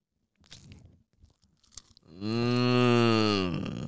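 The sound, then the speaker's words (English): Someone eating a chicken Caesar wrap right up close to the camera: a few scattered crunchy, wet chewing bites, then a loud, sustained low humming groan from a voice, almost like a moo, that fills the last half. “Chicken Caesar hear the wrap.”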